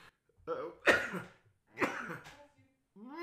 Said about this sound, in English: Sneeze. Alright. Oh, alright, have to edit that out.